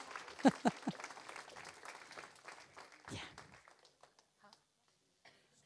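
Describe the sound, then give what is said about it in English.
An audience breaks into applause, a dense burst of many hands clapping with a few voices mixed in, then thinning out and fading to near silence after a few seconds. “Should we give them a round of applause?”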